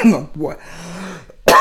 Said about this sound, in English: Why am I coughing so much today?